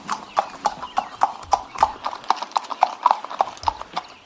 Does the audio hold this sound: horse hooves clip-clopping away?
yes